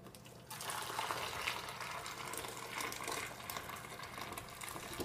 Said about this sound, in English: Now we can pour in boiling water.